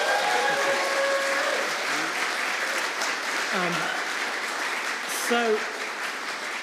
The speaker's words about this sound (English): Why don't you give them a cheer?